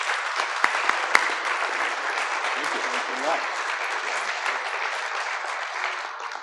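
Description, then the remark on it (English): A crowd applauds a rabbi being welcomed as speaker at the Nixon Library program Stolen Words, a dense wash of many hands clapping at an even loudness for several seconds, with a couple of sharper claps standing out near the start. “Don't applaud yet.”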